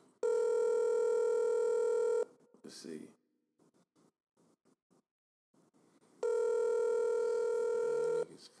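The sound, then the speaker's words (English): An outgoing phone call's ringback tone sounds twice, each steady buzzing ring lasting about two seconds, separated by a quiet pause where someone briefly mutters. “Pick up the phone, nigga.”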